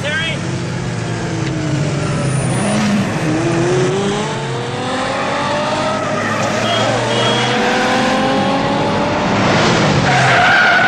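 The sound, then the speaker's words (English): A film car chase: two cars, one a 308, race through traffic on Sunset Boulevard as engines roar and rev and tires screech and skid in long squealing sweeps, loud and continuous, with engine drone underneath and voices faintly mixed in. “It's like they're just flying through traffic.”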